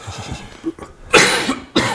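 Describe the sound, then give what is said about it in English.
A man coughs harshly into the microphone, two loud bursts with a short gap between them, preceded by some low murmuring and throat noise. “… coughing into the mic.”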